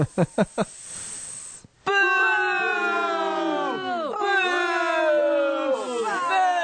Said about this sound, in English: Boy, the crowd's really angry at this one.